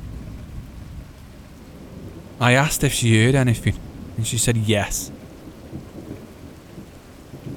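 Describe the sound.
Steady rain hisses throughout with a low rumbling storm bed underneath, while a man speaks briefly in the middle over the constant downpour.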